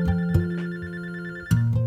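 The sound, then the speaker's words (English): A telephone rings with a steady electronic tone, two sharp bursts marking the start of each ring cycle, fairly loud with no voices. “form a projection, come and materialize and try calling. See if this number works. Test this number for me.”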